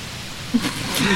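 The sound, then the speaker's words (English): Heavy rain pours down in a steady, loud hiss across the whole short stretch, with a brief burst of someone's voice rising over it near the end. “Oh my god, it's getting so fucking loud with the rain.”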